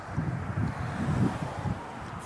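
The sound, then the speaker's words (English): Gusty wind on a cold day buffets a microphone outdoors, producing a steady low rumble with irregular thumping surges and a broad hiss, fairly loud and continuous throughout. “It's cold and windy and I refuse.”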